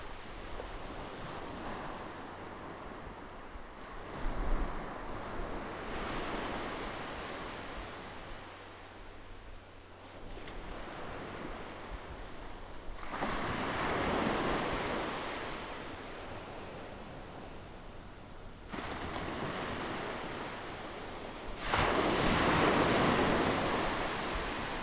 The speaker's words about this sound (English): Picture that you are on a beach. You're sitting in the sand, and you can see the waves crashing against the rocks. You can smell salt, seaweed.